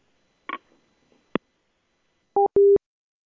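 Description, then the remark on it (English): A couple of clunks like a handset being set down to end a call, followed by two short, steady electronic telephone tone beeps, like a busy or disconnect signal, fairly loud. “Hang up the phone. I'm done with you.”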